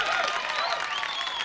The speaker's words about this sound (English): You gotta get some strong stuff. I know. I hate that. That's the white people applause.